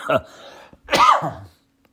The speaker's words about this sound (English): Man, you're probably wondering, why can't he just edit out his coughs? Why can't he edit out his slurps? Well, I'm unedited on purpose.